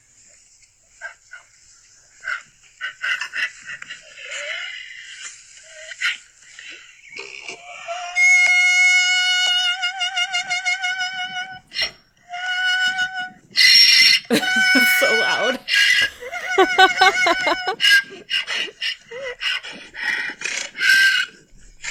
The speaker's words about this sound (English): So, ladies and gentlemen, that was a donkey that was doing basically a perfect vibrato in a G. That was yep. The donkey. Her name is Harriet, and she is the Irish singing donkey.